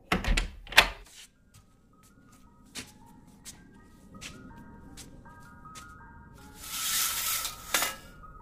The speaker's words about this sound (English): Ice cream truck? It's 11:30 at night. Who the hell is getting ice cream at this time?